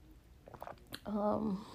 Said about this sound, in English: Like, I feel like, hold on, need a sip of tea.